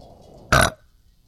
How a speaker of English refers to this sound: Oh, that was such a good one. Wait, it's your first burp on video. I know. That was cute.